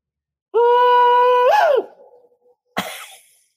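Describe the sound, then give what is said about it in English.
A man imitates a Bigfoot call with a loud, steady howl held for about a second. It swoops up and falls away into a fading echo, then a short, harsh burst of sound follows. “Dude, was that a Bigfoot call?”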